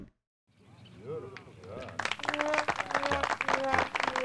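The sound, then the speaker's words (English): A voice murmurs briefly, then a burst of light, steady golf clapping for a dad joke breaks in and keeps going, with voices laughing or talking over the applause. “totally worthy of the golf clap, because that's just freaking terrible.”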